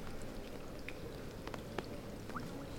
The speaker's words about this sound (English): I've never thought about the sound of the raindrops as they fall into the puddle.